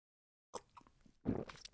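Someone takes a quiet sip of coffee: faint wet lip and mouth noises, then a short slurping gulp after a moment of silence. No one speaks.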